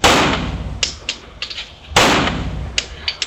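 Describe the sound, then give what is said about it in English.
Two loud, sharp gunshots about two seconds apart, each ringing out in a rumbling decay, with several fainter cracks and clicks scattered between them. No one speaks. “Here's another sound of us shooting.”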